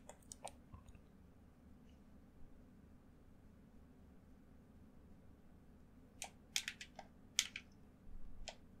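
Quiet game controller buttons click in short bursts while playing the survival video game Stranded Deep: a few snappy taps at the start, then a quicker cluster of sharp clicks near the end, over a low steady hum with no talking.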